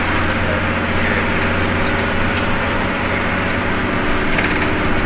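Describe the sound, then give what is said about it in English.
A steady, loud rumble of a city bus interior, with a droning engine and constant road noise filling the cabin throughout, no voices and no pauses. “So most of the bus casts take place on the 50, or...? So the 50, the 2, or the 12, isn't it?”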